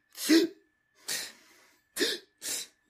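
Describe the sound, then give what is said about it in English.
A voice imitates the strange, labored breathing of a wrestler lying knocked out outside the ring during a match: four harsh, raspy gasps with a rough throaty edge, the second one trailing off into a long wheezy exhale, separated by short silences. “And then he does like that weird breathing thing, which is like...”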